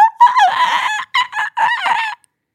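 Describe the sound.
A person imitates dolphin chatter, trying to say something in dolphin, making loud, high-pitched squeals and chirps in three or four quick bursts before falling silent.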